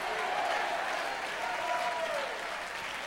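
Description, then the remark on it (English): Steady applause from about 25 people standing up during a church sermon, dense and continuous for about three seconds, with a faint murmur of voices mixed into the clapping. “Now, I appreciate the 25 people that are clapping and standing up.”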